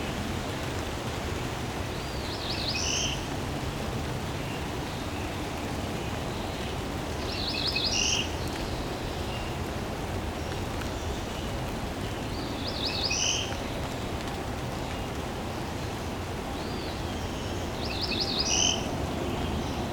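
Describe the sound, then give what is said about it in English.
A cerulean warbler's short, nasal, buzzy song rises four times at steady intervals of about five seconds, thin over a constant wash of rustling leaves or wind, the bird hidden among dense leaves. “Cerulean Warbler.”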